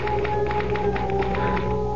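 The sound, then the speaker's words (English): Typewriter keys clack in a brisk, fairly even run of sharp taps, about a dozen strikes, over a steady humming drone with no voices. “I had to get back to that infernal machine. The typewriter.”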